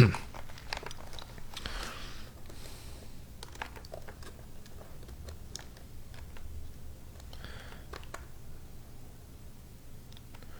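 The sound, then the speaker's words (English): Computer keyboard keys clack in irregular bursts of short, crisp taps, fairly quiet, over a low steady hum, with no one speaking. “Doesn't use page up and page down, just arrows.”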